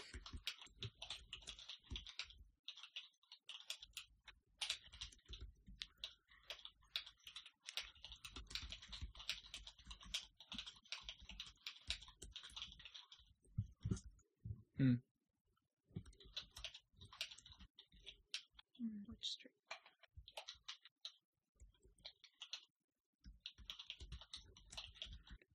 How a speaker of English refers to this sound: I'm typing a thing.